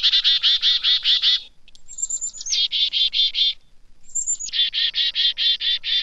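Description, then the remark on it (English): A chickadee's alarm call: three bursts of rapid, buzzy repeated notes, each introduced by a thin high whistle, loud with no other sounds around. “When chickadees see a goshawk, owl, or some other winged predator, the birds issue an alarm call.”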